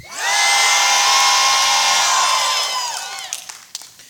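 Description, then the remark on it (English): A large crowd, after a count of three, shouts together in one loud, sustained unison yell lasting a couple of seconds, then trails off into scattered voices and a few short calls. “Now, watch what it sounds like when we all do it.”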